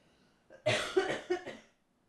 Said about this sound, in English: I'm going to cough.